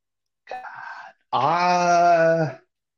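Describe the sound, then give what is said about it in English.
A beagle howling effect played from a soundboard: a short, rough yelp followed by a longer, loud, sustained howl with a steady mournful pitch, heard on its own with no talking. “Every time we play a dog, the beagle comes in.”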